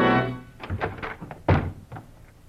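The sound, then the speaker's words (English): FBI agents rush open the bedroom door of kidnapper Frank Hadley: a burst of heavy wooden thunks and rattles with one loud bang midway, after a short sustained tone at the start. “And then, in a quick movement, they rushed the door to Frank Hadley.”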